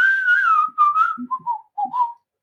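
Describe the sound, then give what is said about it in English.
A person whistles a short tune, a few sliding notes followed by several brief chirpy phrases with small pauses between them, and no talking. “And then he'd whistle.”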